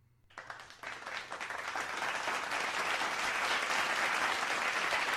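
A round of applause starts suddenly after a brief quiet moment, with dense overlapping hand claps that swell and grow steadily louder, settling into a sustained, full roar of clapping.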